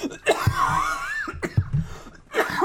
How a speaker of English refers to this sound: Oh, okay. I had to get that out. You okay? Yeah. Yeah. You sure? I just can't shake this cough. I've had it for... It's not COVID.